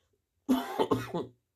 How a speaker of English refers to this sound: Sorry, I was coughing.